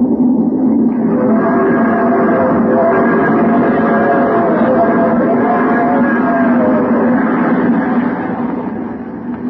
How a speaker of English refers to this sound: The train roars through the night.